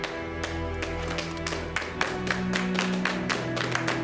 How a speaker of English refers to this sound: Lady Brienne does as told, arising as Sir Brienne of Tarth, ushering tears of joy in millions of households across the globe, as well as uproarious applause in a warm hall of Winterfell.